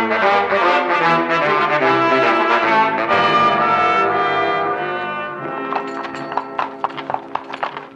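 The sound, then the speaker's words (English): Sustained orchestral music fills the opening, then horse hooves clip-clop in a steady walking rhythm as the horses walk up a stream, the music softening beneath them. “What's the use of having horses if all we do is walk?”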